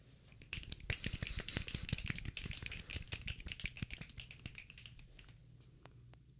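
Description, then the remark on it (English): A dense, irregular flurry of sharp finger snaps, many overlapping as if several people snap at once, thinning out near the end to a few isolated crisp snaps. No one speaks. “Finger snaps can't heal the pain.”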